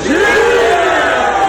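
A show audience lets out a loud, sustained group cheer on a count of three for a man who had gone down on the ground, many voices shouting together at a rising then steady pitch, filling the moment with no break.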